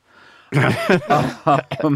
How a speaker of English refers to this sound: I need the listeners at this point to imagine me doing the thing where I'm coughing in a form of syllables, which is a thinly veiled attempt to mask the phrase Saudi Arabia.